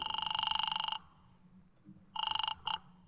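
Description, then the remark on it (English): A warbling telephone ringing tone heard down the line after dialing: one long, fairly quiet ring, a pause, then a second ring that breaks off in a short burst. No voices. “I dialed it and waited.”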